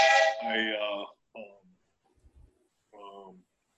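A text message alert in an office that sounds like a train whistle: a loud, rich, chord-like tone lasting about a second, followed by two shorter, softer whistle blasts after brief gaps.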